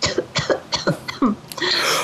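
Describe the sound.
A person coughs and sputters as if coughing up water: about five quick, wet, hacking coughs in a row, fairly loud, ending in a raspy, gurgling gasp.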